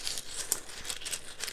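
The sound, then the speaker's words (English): Steady rummaging through a small bag of runes while drawing a rune, with crinkly rustling and a few sharper clicks as the contents shift about. No one speaks. “And as you can hear me shuffling through, and I got, whoops.”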